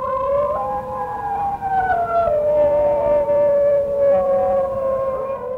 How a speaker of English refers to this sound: Because a wolf howl is actually very low pitched. Whereas the singing dogs are more high pitched. Huh. And it's basically, you know, what would it sound like if a really small dog was trying to howl like a wolf? They're try-hard wolves.